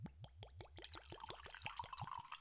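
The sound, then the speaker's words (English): Whiskey glugs out of a bottle into a glass in a quick, steady series of gurgling pulses, the pitch rising as the glass fills, with no one speaking. “All right, let's pour it. Pour it.”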